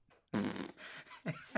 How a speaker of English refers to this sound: And then you gotta hit the fart button from the sample.